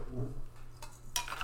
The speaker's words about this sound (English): So, So we're gonna start. We're gonna do our traditional tinky tink before we drink.